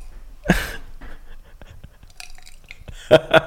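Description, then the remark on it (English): Last drops of Prosecco trickle from a now-empty bottle: a splashy pour, then scattered faint drips and two sharp, glassy plinks near the end, fairly quiet. “Sam trying to pour out the last ditty bits. Can you hear the drops?”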